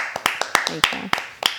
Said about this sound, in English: Hey. Clap for me. Yep. Clap for me. Yeah. Clap for me.